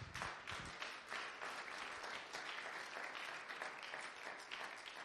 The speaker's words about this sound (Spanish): Fuerte aplauso a él.